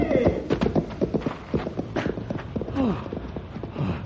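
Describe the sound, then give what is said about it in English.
A frightened horse runs away, its hooves clattering in a quick, steady galloping rhythm, fairly loud, with a short strained whinny breaking through near the end as the hoofbeats carry on. “Oh, it scared my horse away.”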